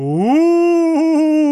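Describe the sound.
A person imitates a dog's howl: one loud, sustained vocal cry that slides upward in pitch, then holds steady with a slight wavering before ending.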